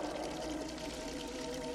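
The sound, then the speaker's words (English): Water pours steadily into a bathtub, a continuous rushing and splashing with no breaks and no voices over it. “Stop water there at once, Jordy.”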